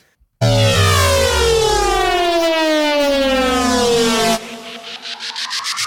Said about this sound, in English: Lightning round. What? I just played the lightning round sound.